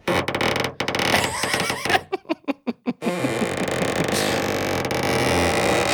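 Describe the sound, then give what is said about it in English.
A hand rubs across a balloon, making loud, continuous rubbery squeaks and groans, broken midway by a quick rhythmic run of about seven short squeaks before the steady squealing resumes. “And as the mom was rubbing her hand on the coat, it made that sound like you're rubbing your hand across a balloon.”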